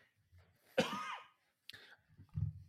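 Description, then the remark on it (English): A single sharp cough bursts out, followed by a shorter second cough and some low rustling and shuffling noise. “I just had to cough.”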